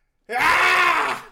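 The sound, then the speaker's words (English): A man lets out one loud, strained scream in imitation of a dramatic movie scream. It is sustained and rich for about a second, starting abruptly and then trailing off. “And Lauren Avedon does the greatest movie scream in the history of movie screams, where he's like, I've been there for 10 years.”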